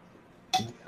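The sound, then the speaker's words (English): Dice rolled for an opposed athletics check in a tabletop game miss the dice tray, landing with a sharp, bright clack, then a brief rattling clatter quickly fades. There is no talking, only low background hiss. “I literally completely missed the dice tray.”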